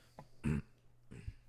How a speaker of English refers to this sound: God damn. I'm like burping today all the time.